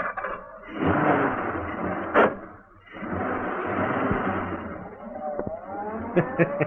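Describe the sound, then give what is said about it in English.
A car engine turns over and catches after a sharp clunk, then rumbles steadily and rises in pitch as the vehicle pulls away, fairly loud. Two men have climbed into the car and started it with an ignition key. “the two men climbed into the car. I hope that ignition key of yours works, Pike.”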